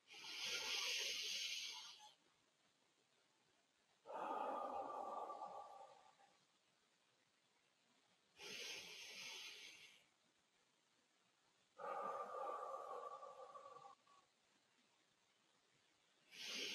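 Slow, deep breathing in a guided relaxation exercise: hissy inhales through the nose alternate with softer, lower exhales through the mouth, each lasting about two seconds with quiet pauses between, and no talking.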